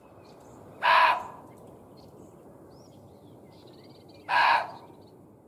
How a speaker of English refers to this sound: It's been hypothesized that the animal noises heard by Halt and his men were muntjac deer. They can bark repeatedly and loudly, and can be known to scream when frightened. Take a listen.